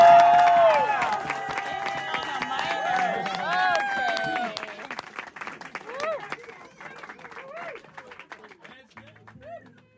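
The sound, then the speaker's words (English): A crowd of Nashville musicians claps and cheers, with voices whooping over steady applause; the noise is loud for the first few seconds, then gradually dies down to scattered clapping and chatter. “I mean, to get a crowd of Nashville musicians clapping is a nearly impossible feat.”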